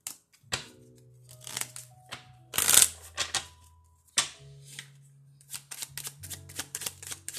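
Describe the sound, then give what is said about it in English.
Riffling and shuffling of a deck of cards during a card reading, with crisp bursts of flicking paper repeating in quick irregular runs, a louder riffle near the middle, alone with no talking. “It's the shuffle for me.”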